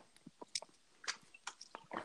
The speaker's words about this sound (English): I apologize. I took a sip of water.